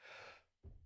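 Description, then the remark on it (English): A single sneeze: a drawn-in, breathy gasp, a brief pause, then a sudden loud burst of air. No one speaks. “wow, I sneezed. Let's leave that in.”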